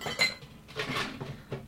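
Ice being dropped into metal cocktail tins to pre-ice them before making cocktails: a handful of bright, clattering clinks and rattles in an irregular burst, with no one talking.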